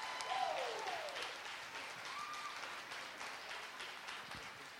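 A crowd applauds steadily, a dense wash of clapping that holds at an even level throughout, with a couple of brief whoops or cheers rising over it.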